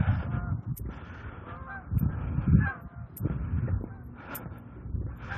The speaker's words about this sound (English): Geese.